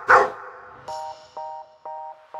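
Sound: dog barking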